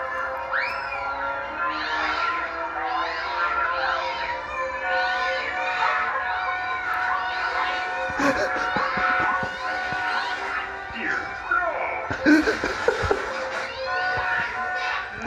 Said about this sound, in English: We're just gonna watch a dog kill several cats.